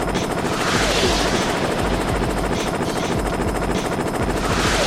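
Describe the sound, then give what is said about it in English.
A loud, steady video game helicopter rotor chops continuously for the whole stretch, thick, with a dense rattling texture running underneath and no voices. “Tanks. Planes. Helicopters. Just helicopters.”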